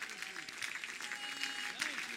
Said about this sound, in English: Oh, if you know that to be true, you ought to clap your hands.